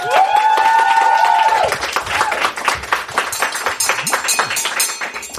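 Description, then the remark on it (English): A sustained, high-pitched whoop opens the moment, then a round of applause follows: dense, steady clapping that stays fairly loud for several seconds. “Number one bestseller on Amazon, people. Round of applause.”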